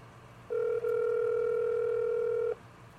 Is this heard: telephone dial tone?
yes